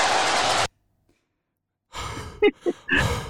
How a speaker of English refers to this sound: Just panting into the mic. Sounds like he's on Xbox. Like, hey, man, quit breathing into the mic.